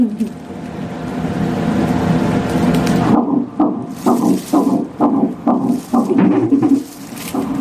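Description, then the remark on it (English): Fetal heartbeat of a six-week-old baby on an ultrasound monitor: a few seconds of steady static hiss, then a fast, regular train of loud whooshing thumps, with no one talking. “That's the heartbeat of a baby at 6 weeks old.”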